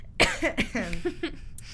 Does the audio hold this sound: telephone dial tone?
no